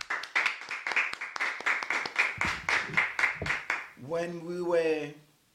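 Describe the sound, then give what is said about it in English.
A church audience claps for the Lord in a steady, fairly loud rhythm for about four seconds, then the clapping stops and a single voice calls out briefly with a rising and falling pitch. “Give the Lord another clap.”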